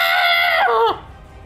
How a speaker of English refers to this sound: Okay, it takes 7 fire damage and the tattered robe it is wearing engulfs in flame. If you thought it wasn't screaming before, now it's screaming louder.